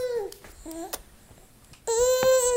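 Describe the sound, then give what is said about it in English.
A newborn baby makes short babbling coos, pauses, then breaks into a loud, sustained wail, with no one talking. “And think about newborns.”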